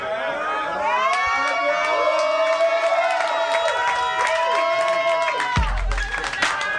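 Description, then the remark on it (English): A crowd cheers and applauds loudly and steadily, with many overlapping whooping voices and scattered sharp claps; near the end a low thump cuts in and the cheering continues more raggedly. “I probably sum it up in something that you can applaud to, like a rock battle.”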